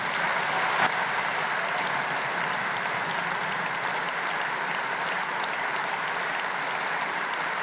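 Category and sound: crowd, applause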